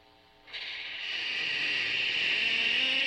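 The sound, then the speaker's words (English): A spooky, Halloween-style door-opening sound effect from an effects box: after a short silence, a loud, airy hiss swells in and holds steady for a few seconds over faint, low droning tones, with no voices. “It's like a door opening.”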